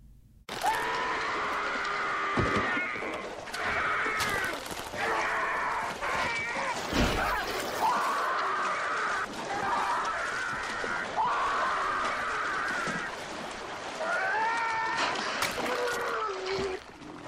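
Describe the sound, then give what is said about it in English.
A man screams repeatedly in long, strained cries, nearly continuous, as he is attacked by a shark, while water splashes and churns around him with sharp bursts of thrashing. “Like, what are the sounds besides this dude screaming?”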